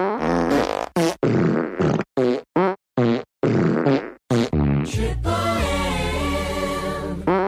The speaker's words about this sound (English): And now, a spontaneous medley of farts.